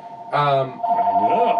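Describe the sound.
A home telephone rings with a steady electronic warble running underneath, while people talk loudly over it.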